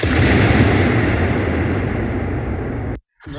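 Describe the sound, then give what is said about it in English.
A balloon bursts inside the Hagia Sophia with a gunshot-like bang, followed by a long, rumbling reverberant tail that slowly fades over about three seconds before cutting off abruptly. Another loud burst begins right at the end. “It's just like this ridiculously long gunshot of a balloon pop.”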